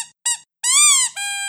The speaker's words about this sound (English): Oh, she has this little lamb that she's just obsessed with. I wanted her to like her Santa more, but the lamb is definitely her favorite. Is it squeaky? Yes. The squeak doesn't work super well already, but it did used to squeak.